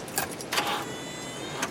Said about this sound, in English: I swear when he first tries to turn the key and it doesn't start, I swear Carpenter put one of the photo sounds from the opening of Texas Chainsaw. I heard that on this.